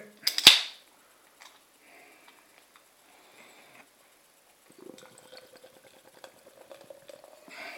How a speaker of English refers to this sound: So, tonight I have a can of Lumina. Siren Lumia Session IPA. 4.2%. Comes in a 330ml can. Get this out into my glass. There we go.